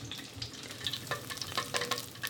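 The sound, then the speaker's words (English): Beignets fry steadily in hot oil in a cast iron skillet, a dense crackling sizzle with bright popping bursts scattered throughout, with no voices over it. “Even though I could have spent hours watching beignets fry in a cast iron skillet,”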